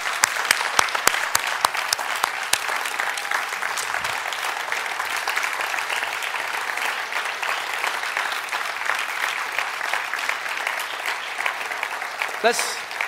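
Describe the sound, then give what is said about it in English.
An audience claps and applauds God steadily for several seconds, a dense wash of hand claps filling the room, with a few sharper individual claps standing out near the start. “Let's remain standing in the presence of the God we're clapping for, and let's pray.”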